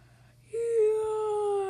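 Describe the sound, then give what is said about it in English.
A voice lets out a drawn-out, yawn-like sound: a sudden onset, then a steady tone that sags slowly in pitch and holds for over a second, with no words. “Okay, that was not a yawn.”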